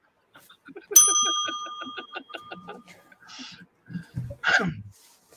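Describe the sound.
A small bell is struck once, its bright ringing tone lingering and slowly fading over about two seconds while people talk underneath and continue afterward.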